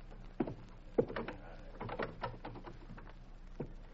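A front door is unlatched and opened: sharp clicks and a rattling handle, then soft creaks and shuffling knocks as it swings, with one more thud near the end. No one speaks.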